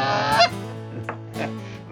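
Canada geese honk in a noisy burst during an early-September goose hunt in Canada, harsh nasal calls overlapping, with one loud honk standing out before the flock keeps calling raggedly.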